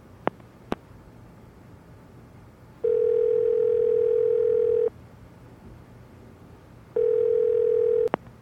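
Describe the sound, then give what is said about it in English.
A phone call being placed: a few sharp clicks, then two long, steady electronic ringing tones, each about two seconds, separated by a pause. No one speaks. “I'm going to call him.”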